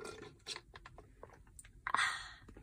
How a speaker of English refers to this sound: But yeah, hold on, let me take a sip of my coffee. It's literally melted, so it's just water at this point.